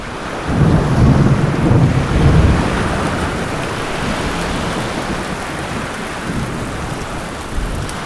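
A thunderstorm in heavy rain: a deep, loud rumble of thunder rolls early on, then dense, steady rainfall hisses and patters continuously to the end, with a faint gusty wind underneath.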